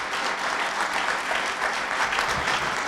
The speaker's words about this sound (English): Could we get a round of applause for my awesome panel?